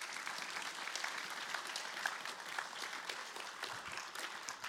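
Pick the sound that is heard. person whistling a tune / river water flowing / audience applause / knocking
audience applause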